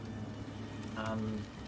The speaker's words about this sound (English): Yes, the rainstorm outside has calmed to a small drizzle.